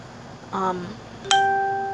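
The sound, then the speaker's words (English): A phone notification ding: a soft, short tone followed by a brighter, higher chime that rings out and slowly fades over a faint background hum. “I don't know if you heard that or not, but my phone just dinged.”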